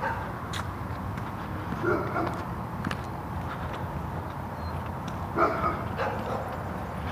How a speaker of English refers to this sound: Dogs barking everywhere this morning.